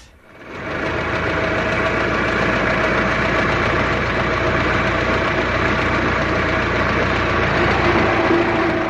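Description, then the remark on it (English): An old Model T Ford engine catches within the first second and then runs steadily, a loud, rattling chug with a fast knocking rhythm that continues without any voices. “They're well known now to everybody as the old Model T, which was the father of all the motor cars, I think.”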